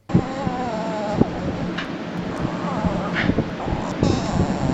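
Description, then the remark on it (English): A dog, Moo Moo, makes odd, squeaky whining and warbling vocal noises, high and wavering, almost dolphin-like, over a steady rushing background with a few soft knocks. “I actually thought it was a dolphin, but I wanted to confirm. That is my dog, my Safi Moo Moo.”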